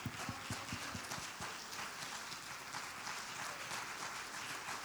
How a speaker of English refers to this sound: If you believe he's Lord, stand up and give him a hand clap of praise. Come on, give him a hand clap of praise.